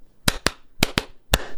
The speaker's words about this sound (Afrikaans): I gave you a clap so you know when the video starts